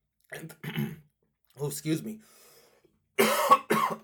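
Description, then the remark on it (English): Several coughs come in quick pairs, the last two louder and harsher than the rest, with brief silences between them. “Pardon me, I did not mean to cough.”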